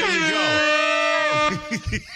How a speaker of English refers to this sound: Could you hold that damn horn, please?